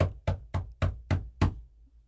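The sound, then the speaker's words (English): Six sharp knocks on a door by a squirrel, in a quick, steady rhythm and fairly loud, with no voices, then quiet. “I go, look, there's a squirrel knocking on the door with this, "Where's my crepe?" look.”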